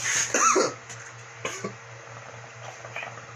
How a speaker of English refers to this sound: Don't cough into my bong, you little bitch.